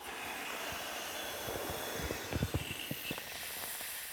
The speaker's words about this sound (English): So here we have a devilish red whoopee cushion with a pentagram emblazoned in black spray paint on the facade. Going to blow it up now.